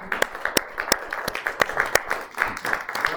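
A group of people applauds, producing a steady patter of overlapping claps with several sharper, louder hand claps standing out, sustained for a few seconds. The applause thanks a man for making breakfast.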